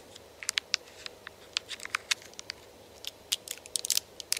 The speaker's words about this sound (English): Then they took a bite and chewed.